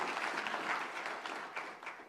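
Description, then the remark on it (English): A crowd in a church applauds steadily for a couple of seconds for the people who spent the previous day decorating it, a dense wash of many hands clapping at once with a few sharper claps standing out, fairly soft overall and with no one speaking. “So how about a round of applause for these guys for the time they spent yesterday?”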